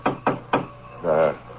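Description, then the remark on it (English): Three sharp knocks rap on a compartment door in an uneven rhythm, the last after a slight pause, followed by a short voiced utterance from someone. “Go see who that is with you.”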